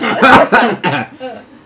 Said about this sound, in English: I'm coughing up feathers.